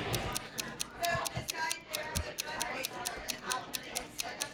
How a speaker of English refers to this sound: It's the freaking ticking. That's what's wrong with the world around you.